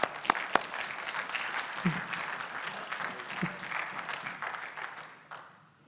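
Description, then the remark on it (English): A church audience claps together for a scripture verse in a steady burst of applause lasting several seconds, dense, with a few faint voices mixed in before it tapers off. “I think that scripture alone needs a clap.”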